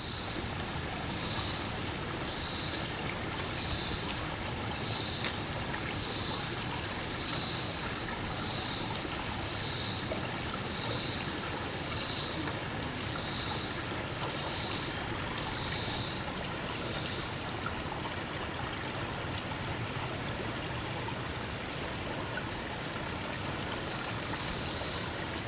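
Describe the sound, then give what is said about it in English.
A loud, steady drone of cicadas, pulsing rhythmically for a while and then holding a constant buzz, rides above the soft continuous rush of the Lost River at the Wesley Chapel Gulf, Orange County, Indiana, with no voices present. “You've been listening to Cicadas Over the Lost River at the Wesley Chapel Gulf, Orange County, Indiana.”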